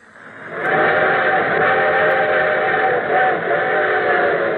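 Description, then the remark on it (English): A train approaching, its whistle swelling up from quiet into a loud, steady, reverberant chord that holds without pause. No one speaks. “And here comes our summer show train.”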